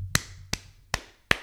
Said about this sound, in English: You can't see it, but that's me clapping.